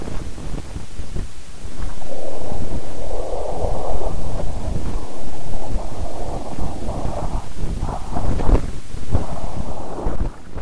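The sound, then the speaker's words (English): Audified data plays as a steady low rumble with a soft, subtle whooshing swell in the mids, wind-like and continuous for about ten seconds, with no voices. “Well, there is a little bit of a whooshing sound in there.”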